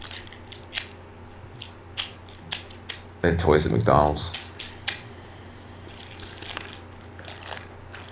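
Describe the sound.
A plastic ice bag that has been held on a person's neck is played with, crinkling and rustling in a string of sharp, irregular crackles through the whole clip, with a voice speaking briefly partway through.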